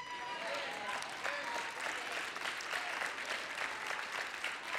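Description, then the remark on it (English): A church audience claps steadily for several seconds during a pastor's sermon, a dense, even patter of many overlapping hands, fairly loud and sustained without letting up, with faint crowd murmur mixed in. “Hear me again, I'll say it because you were clapping.”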